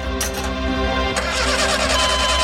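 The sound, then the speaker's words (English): A car engine cranks steadily with a low, droning mechanical churn, fairly loud, with a couple of brief rasping bursts but no sign of catching and starting. “try to start the car!”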